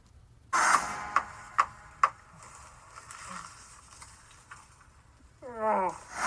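Four crisp clicks of Han's playing cards tapping on a table, evenly spaced, with a low room hum, then a brief warbling, growly vocal cry from Chewie at the end.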